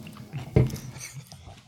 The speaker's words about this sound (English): Some freeze dried strawberries too, right? Pair this freeze dried strawberries with some fucking Truly. Go on. Let's get to ASMR. Yeah, let them hear that chewing. Yeah. Yeah. Yeah. He's chewing. Do you like the way it hits his teeth?